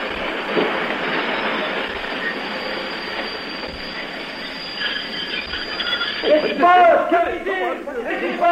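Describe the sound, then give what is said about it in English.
A train rumbles loudly with a steady, high metallic squeal of wheels braking as it comes to a stop after the emergency cord is pulled; near the end, voices break in over the fading noise. “So what now? Well, the old emergency cord, of course.”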